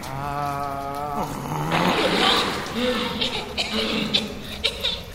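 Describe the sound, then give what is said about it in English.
After a brief vocal exclamation, a loud rush of gushing water surges up as a geyser erupts from a well, putting out a fuse, and keeps roaring and splashing for several seconds, with a few voices faintly mixed in. “A geyser of water erupted from the well and extinguished the fuse, stopping the explosion.”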